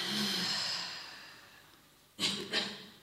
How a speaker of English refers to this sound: And one more deliberate breath, breathing in. And letting it go.